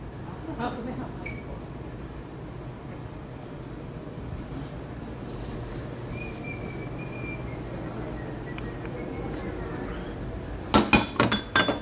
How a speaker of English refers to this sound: Let me get that plate from you.